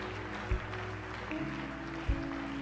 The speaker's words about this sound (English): Oh, your clapping is... Hallelujah.